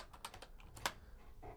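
Quick keyboard typing, a run of light clicky keystrokes at an uneven pace with one sharper tap standing out, quiet, with no voices.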